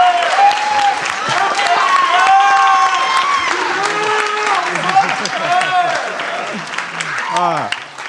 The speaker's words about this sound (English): Thank you, everyone, for joining us here at the first live taping of the You're Not So Smart podcast. Round of applause for everyone that's been here.